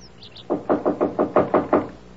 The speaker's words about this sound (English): People in 2B called. Said some guy was hammering on the door to the apartment next door.